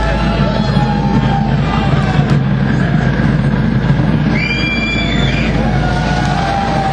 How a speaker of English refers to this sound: The lights just went down, and I'm sure you hear the crowd. Oh, I love the hum there.